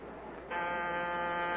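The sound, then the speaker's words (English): A steady, harsh electric doorbell buzzer sounds after a short quiet stretch and keeps droning loudly, one continuous rasping tone rich in overtones, running to the end with no talk over it. “He figured it as a trap with the cops waiting to bag him the minute he rings a bell.”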